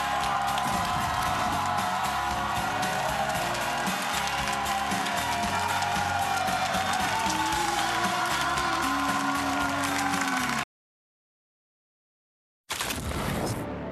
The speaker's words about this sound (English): College Football Live rolling on from Knoxville, Tennessee. When we return, good crowd out here for a Friday, making some noise, supporting their squads. Gotta love it.